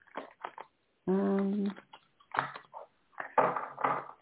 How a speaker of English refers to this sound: Let's just wing this and see one more shuffle for the cards and see what kind.